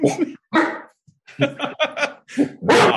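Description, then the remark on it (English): A dog gives a rapid, urgent run of loud alarm barks, several sharp barks in quick succession with only brief pauses between them. “I tried all my tricks with Freddie, but his bark was not as intimidating as your dog.”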